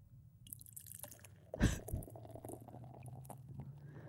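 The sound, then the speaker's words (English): A beer opens with a sharp, hissing crack, followed by liquid pouring and trickling into a pint glass, fairly quiet, with a low steady hum underneath and no talking. “We're pouring it in the glass.”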